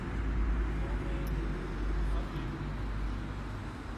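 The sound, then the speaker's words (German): A steady low rumble of cars driving past on Wielandplatz, a city square, late at night, the traffic noise swelling and easing slightly as vehicles go by. “Ich sitze am Wielandplatz und höre Autos an mir vorbeifahren und die Kulisse hört sich ein bisschen komisch an.”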